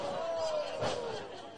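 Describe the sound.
A single heavy thud of a wrestler knocked down onto his back on the ring mat after a wind-up throw lands mid-clip, fairly loud, over a steady murmur of crowd noise and background voices.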